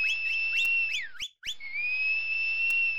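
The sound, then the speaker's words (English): A high, shrill whistle opens with a quick run of rising chirps, breaks off briefly, then holds one long steady tone. It is loud, with no talking. “Give a high tootling blow for beasties and ferocious fanged loomers of the dark. She whistled. All whistled.”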